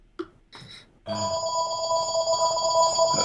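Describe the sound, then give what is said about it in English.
A telephone that is out of reach rings loudly and steadily from about one second in, a sustained bright electronic trill, preceded by a couple of brief muffled sounds or voices. “Are we going to let this one ride out, or? Yeah, I have to, because the phone, I can't reach the phone.”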